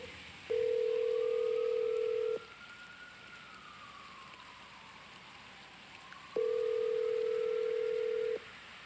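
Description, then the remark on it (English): An outgoing phone call rings on the line: two long, steady ringback tones about four seconds apart, clear and fairly loud over a faint hissy background with a soft wavering tone. “Because I know for a fact he was watching the phone ring.”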